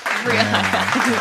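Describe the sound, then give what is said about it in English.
Late hand clapping from a last clapper crackles steadily for about a second, fairly loud, with a low voice sounding underneath it the whole time. “the late clapper, the last clapper.”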